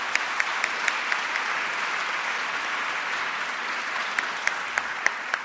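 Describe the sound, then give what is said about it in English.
An audience claps steadily for Sheila Cast of radio station WYPR, the evening's host. A dense, even wash of hand claps runs throughout, with a few sharper individual claps popping out above the crowd. No one speaks. “So let's give her a nice round of applause, Sheila Cast.”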